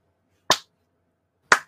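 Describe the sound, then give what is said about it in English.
Two sharp, crisp hand claps spaced about a second apart in an otherwise silent space, like the start of a deliberate slow clap. “Did you feel like it was a slow clap?”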